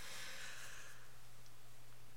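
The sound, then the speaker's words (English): A woman yawns with a soft, breathy exhale that fades out after about a second, followed by near-silence over a low steady hum. “I thought you were going to cough again. She's just yawning.”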